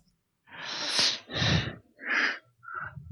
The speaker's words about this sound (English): Somebody's breathing right into their mic.